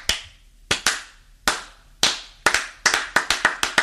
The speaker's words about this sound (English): I was telling TJ that the first slow clap was Brubaker